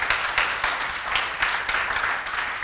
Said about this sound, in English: God has called two precious, precious people to your life, and you should be so grateful for them. Could you give them honor and praise by a hand clap of appreciation?